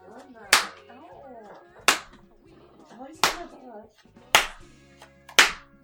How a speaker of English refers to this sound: That's me slapping her ass, if you can hear that.